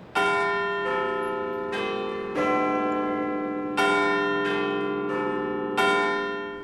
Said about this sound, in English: Big Ben's chimes are getting a test run. It's the first time the bells have been heard for a sustained period since renovation work began in 2017.